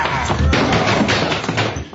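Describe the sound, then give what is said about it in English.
A heavy, dull thud of a man thrown over another's head and hitting the ground, loud, amid a short burst of scuffling and muffled vocal grunts. “You throw him over your head and knock him out.”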